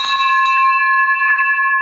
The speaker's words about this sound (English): I broke the bell. That broke the bell.